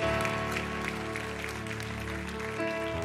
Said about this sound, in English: If you receive it, clap your hands in the Lord. Amen. Clap your hands in the Lord.